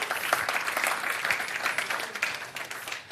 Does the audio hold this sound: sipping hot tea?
no